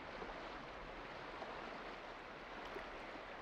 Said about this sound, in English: Let's take a few more breaths here together before you drift off to the sounds of the water and the rain on the water.